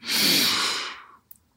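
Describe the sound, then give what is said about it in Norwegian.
A single long, deep breath drawn in, airy and steady for about a second before tapering off into quiet, with no talking. “Og så sier jeg det, jeg puster litt dypt inn.”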